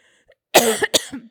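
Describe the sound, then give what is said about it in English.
A loud cough from a speaker with a tickle in the throat, in two quick harsh bursts, the second followed by a brief raspy tail, with no talking around it. “Returning back, I'm sorry for my cough.”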